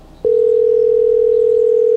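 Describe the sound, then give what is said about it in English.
A phone call ringing tone, made while calling someone back, starts abruptly after a brief quiet moment and holds as one steady, unbroken mid-pitched hum at a loud, even level, with no voices. “No, you were calling Marshall back.”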